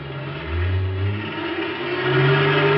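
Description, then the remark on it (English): A semi-trailer truck engine roars and revs about 100 yards away as the truck pulls itself loose from a wrecked new sedan jammed into its rear end. Its deep, rumbling tone climbs and holds steady for a few seconds, with no voices. “We still had about 100 yards to go when the truck roared up and started pulling itself loose from the wrecked car.”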